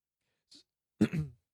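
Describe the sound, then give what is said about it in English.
A short intake of breath, then one rough, gravelly throat clearing, lasting under half a second, with no talking around it. “So clear his throat.”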